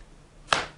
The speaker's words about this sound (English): Oh, that slap. Looks like it hurts more, the open hand slap.